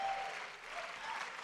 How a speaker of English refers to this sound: Somebody ought to clap like we are a people dependent on Almighty God.